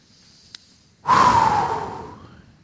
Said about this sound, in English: And I want to have everybody take a deep breath and relax when you think about prayer. Everybody take a deep breath.